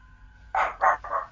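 A dog barks three times in quick succession, sharp and fairly loud, with a faint steady hum in the background and no one talking.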